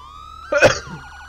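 A video game police car's siren sounds steadily, its tone rising and then warbling quickly, interrupted midway by a short, loud burst of noise. No one speaks.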